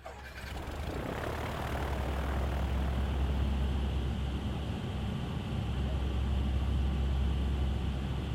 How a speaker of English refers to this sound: The only thing you can see inside a C-130 at night like that is this, the red jump light above the jump door and down on the floor, and there's this hum of the plane.